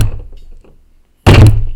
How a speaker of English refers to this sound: They're hitting the front door with the battering ram. And apparently they now know what they're doing. There's at least probably 2 guys hitting this front door.